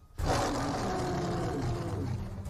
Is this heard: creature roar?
yes